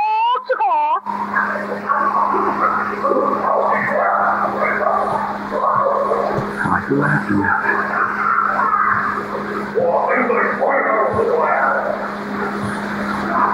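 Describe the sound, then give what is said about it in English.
Rapid, jabbering vocal chatter, supposedly from a Sasquatch, pours out continuously in bursts of garbled syllables over a steady low hum, opening with a brief warbling tone. “Okay, we have more of the chatter.”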